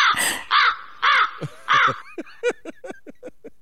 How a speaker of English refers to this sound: It's a crow. That's a little crow. Little crow ain't hurt nobody.